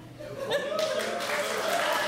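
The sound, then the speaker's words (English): A crowd breaks into applause to vote that they would have chosen the roof, a dense, steady wash of many hands clapping that swells in after a brief moment and holds at an even level, with a few voices mixed in. “How many of you, by a round of applause, would have chosen roof?”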